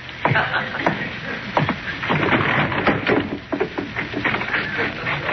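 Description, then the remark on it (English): A window slides shut in a house library, then blinds are drawn with a steady rattling, clattering rush, punctuated by a few sharper knocks along the way, fairly loud throughout with no talking. “You locked the door, closed the window, and drew the blinds.”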